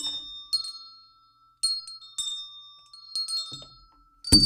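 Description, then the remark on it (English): Several handbells, rung with one hand, ring one after another in bright, sustained metallic tones, with a few separate strikes and pauses between them, ending in a loud thump as the microphone is knocked while reaching for the bells. “You're only ringing them with one hand.”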